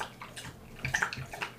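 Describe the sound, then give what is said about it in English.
A dog laps at water, a quiet run of wet, splashy slurps and small drips coming in an uneven rhythm, with no voices. “My dog is currently drinking.”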